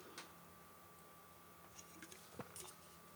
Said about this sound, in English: This is the old-style Pilsner from, of course, Godspeed. Bless their souls. Hang on one sec. One more sip.